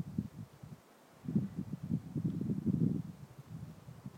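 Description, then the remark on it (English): Wind blows through juniper and pinyon in the El Malpais National Conservation Area as a storm front moves in without rain yet, in a low, rushing roar that swells and fades in uneven gusts, briefly dropping away before rising again. No voices are heard. “The sound you hear is wind blowing through juniper and pinyon.”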